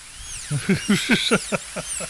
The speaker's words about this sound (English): Seriously? You're not liking my drilling? No. Put that thing away.